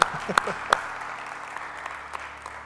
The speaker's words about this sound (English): So let's give God a hand clap of praise for that.